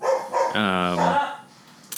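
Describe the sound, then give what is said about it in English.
A single drawn-out dog bark rings out loud from a dog let outside, with a strained, tonal quality, followed by a quiet pause and a faint scuffing noise at the end. “All right, they go outside and they bark and I hate it.”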